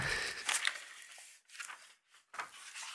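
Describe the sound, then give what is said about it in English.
Paper is ripped out of a notebook in several raspy tearing bursts, a long rip followed by a few shorter pulls with brief pauses between, and no one speaking. “You're tearing up your Stranger Things notebook.”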